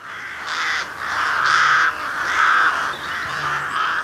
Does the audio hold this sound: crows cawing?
yes